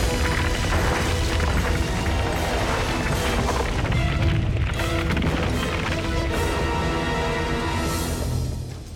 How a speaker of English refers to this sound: I mean, an exercise ball turns into a giant boulder suddenly with earthquake sound effects.